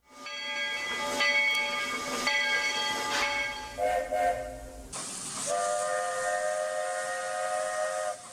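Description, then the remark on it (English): A steam train whistle of the Walt Disney World Railroad in Magic Kingdom Park blows loud in several long, sustained chord-like blasts, with a burst of hissing steam near the end; no one talks. “that's the train, right? That's the Walt Disney World Railroad.”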